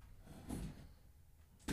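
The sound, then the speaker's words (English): A toddler moves a chair in, scraping and bumping it across a floor, with a louder scuff near the start and another sharp scrape at the very end over a low rumble. “You're just going to move your chair in, huh?”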